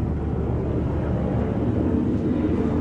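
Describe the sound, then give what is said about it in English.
A steady, loud engine drone with a deep low-frequency rumble from a black helicopter coming back round overhead, continuing without a break and with no one speaking. “Is that helicopter coming back round? It is.”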